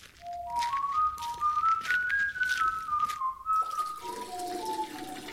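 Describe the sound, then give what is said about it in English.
A person whistles a wandering tune while urinating onto a vegetable patch in a garden, a steady hissing, splashing stream running beneath the whistle throughout. “Well, I'm going to go out and water the vegetable patch right now.”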